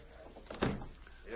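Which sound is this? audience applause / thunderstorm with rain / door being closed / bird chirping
door being closed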